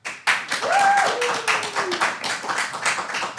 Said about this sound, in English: So I'm going to ask you, the audience, to clap for whichever... our team you think should win this debate. We will start with the pro-nostalgia team.